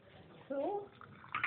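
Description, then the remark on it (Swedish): Coffee is poured into a cup during a coffee break at a cabin in Brötar, a short gurgling stream whose pitch rises as the cup fills, followed by a few faint clinks and splashes. “Det kommer, det här ljudet av kaffe som hälls upp kommer med på.”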